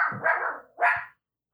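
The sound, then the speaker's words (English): A dog barks twice: a longer, rough bark followed after a short pause by a sharper second one, both fairly loud and mid-pitched, with no voices present. “No, the dog is working.”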